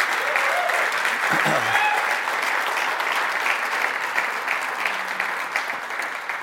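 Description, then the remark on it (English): A crowd claps steadily and loudly for several seconds, a dense, even wash of many hands with no words spoken, tapering slightly toward the end: another round of applause for the people who ran the event. “and I have been ridiculously blessed by being here, and I think a lot of you have by seeing how this has been done, so they need another round of applause, please.”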